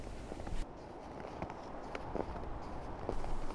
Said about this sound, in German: Deine Schritte auf dem knirschenden Schneepfad jedoch sind sicher und bestimmt.